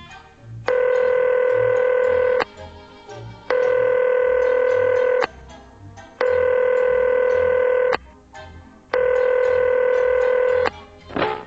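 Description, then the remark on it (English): Someone dials a payphone after feeding it coins: four long, steady electronic telephone tones repeat with short pauses between them, clear, over a faint low background rumble. No one speaks. “I kept plugging coins into the payphone, one after another, but nothing much happened.”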